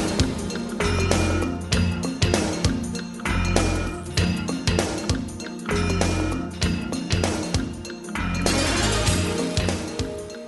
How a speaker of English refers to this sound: More good percussion. This just sounds like somebody's hitting the metal with a hammer. Kind of like that. Some nice rough percussion.